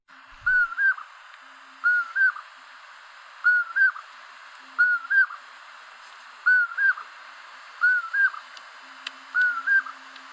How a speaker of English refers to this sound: The porwill is so named not because of their lack of willpower, but because of the strange call they make in the night. Kinda a porwill kind of sound, I guess.